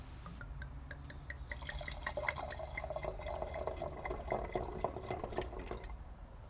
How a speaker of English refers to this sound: The two loveliest sounds in the world are the sounds of a cork popping and the sound of a wine bottle pouring.